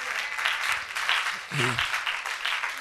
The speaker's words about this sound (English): Someone, why don't you clap for the mercies of God?